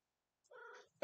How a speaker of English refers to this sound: Stop meowing. Aw, what a good cat. What a good cat. I have a guest star. Sounds like a Minecraft cat. Shut up. You're being noisy.